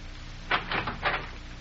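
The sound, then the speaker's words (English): A door opens as someone comes in, with a quick series of three scraping, creaking bursts over about half a second, set against a quiet hum with no one speaking. “Just watch who comes through that door.”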